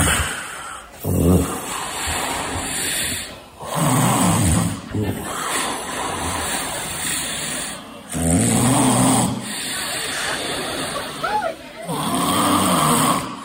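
man snoring loudly

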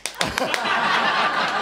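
hand clap

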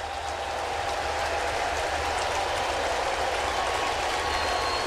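ballpark crowd applauding

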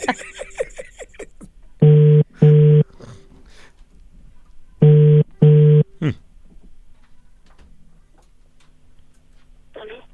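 telephone call ringing tone

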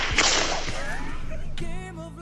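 whip crack sound effect

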